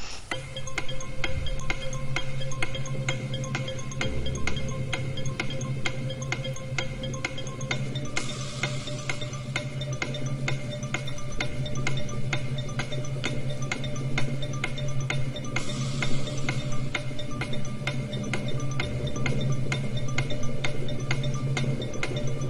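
A countdown clock for a word-puzzle tiebreaker ticks steadily and evenly over a low, droning musical bed. It runs without pause for over twenty seconds at a moderate, constant level with no one speaking.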